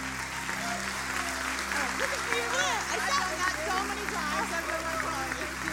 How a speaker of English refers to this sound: Come on up. Would you stand with me and give her a big hand of applause?